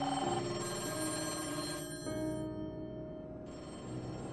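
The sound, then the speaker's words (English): Old-fashioned telephone bells at the Berkeley police department ring continuously and loudly with tips, several seeming to overlap and shift as one stops and another starts, with no one speaking. “Over the next 19 days, Berkeley's PD phones were ringing off the hook, all with tips on who had taken Christine.”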